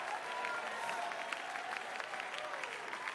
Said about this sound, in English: Now, Black David said, oh, clap your hands, all ye people, ready, and shout with a voice of triumph.